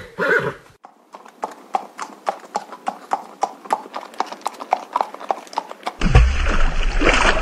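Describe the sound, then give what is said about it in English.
A horse wearing an air tank, weight belt, custom-made face mask and a light fixed on its head whinnies briefly, then hooves clip-clop in a steady, brisk rhythm as it is ridden, before giving way to a louder rushing, splashing noise as it cannonballs into very cold water. “the big light that was fixed onto the horse's head. Then he mounted Argentum. Hi-yo, Argentum! Cannonball!”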